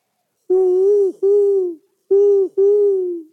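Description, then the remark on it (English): Four loud owl hoots in two pairs, each a steady, mellow note with a gentle fall at the end and a short pause between the pairs. No voices. “that wasn't me calling outside your window last night. At the bed and breakfast, we heard owls all night.”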